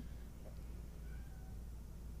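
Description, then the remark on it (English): A cat meows faintly a couple of times, thin drawn-out cries over a steady low rumble, with no one speaking. “What the fuck is wrong with this cat?”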